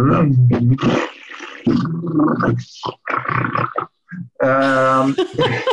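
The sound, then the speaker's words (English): A person's voice imitates a lion roar with a series of loud, throaty, growling bursts separated by brief pauses, ending in a strained, sustained roar. “I get very primal. A lion roar comes out and everything”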